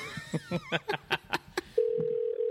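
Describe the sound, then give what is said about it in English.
A quick series of phone keypad beeps, then a steady electronic ringback tone from an outgoing call to a Best Buy store in Decatur starts and holds, fairly loud, with no voices. “Watch him not answer now.”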